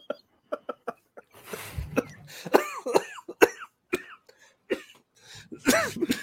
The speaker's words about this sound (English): Made me start coughing.